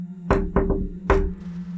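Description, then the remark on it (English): Several solid, resonant knocks on a door tap out the uneven opening rhythm of shave-and-a-haircut, then stop without the closing two beats, over a steady low hum. “Yeah, you do the shave and a haircut, nobody completes the two-bits bit.”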